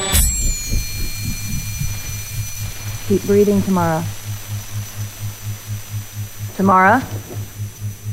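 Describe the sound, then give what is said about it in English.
A pulsed exposure device set to 62.5 PRF hums steadily and low during the first of two 5-second exposures given to a patient, with a faint rhythmic throbbing and a thin high tone above it throughout. A voice speaks briefly twice over the hum. “For the record, this is round 13 with dosage of 2 full exposures, 62.5 PRF, 5 seconds each.”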